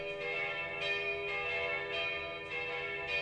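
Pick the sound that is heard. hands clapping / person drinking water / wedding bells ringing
wedding bells ringing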